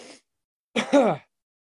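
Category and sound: human body sound, cough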